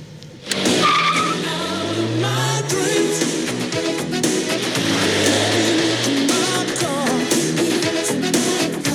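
A car engine revs loudly and tires squeal as a man drives a woman's car away, a dense, sustained roar that fills the whole stretch after a brief quiet start.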